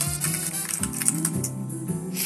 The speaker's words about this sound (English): I'm just typing it in the database